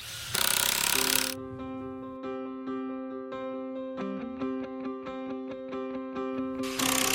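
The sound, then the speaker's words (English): A power drill whines steadily while driving screws into a wooden subfloor, with rapid rhythmic clicking throughout and harsh, noisy bursts at the start and end. It sounds fairly loud, with no talking. “Give me the screws and a drill.”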